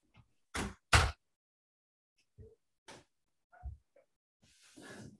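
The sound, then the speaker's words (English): Two loud, sharp knocks on a hotel room door in quick succession, made by housekeeping checking whether they could clean the room, followed by a few softer scattered thumps and a brief rustle of movement in an otherwise quiet room. “So, I'm getting a knock at my door.”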